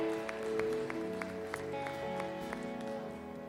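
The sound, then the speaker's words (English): A crowd claps together in praise of the Lord in a steady rhythm, roughly three claps per second, over sustained keyboard or organ chords that ring underneath throughout. “Come on, give the Lord one more hand clap of praise.”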